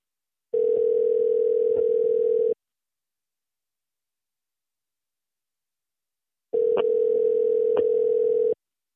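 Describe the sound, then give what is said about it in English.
Two long bursts of a steady electronic ringback tone on an outgoing phone call, each about two seconds, separated by a long silent gap, heard alone and fairly loud with no voices. “This is actually a special call that I'm about to do. I have not spoken to this person on the phone in a minute.”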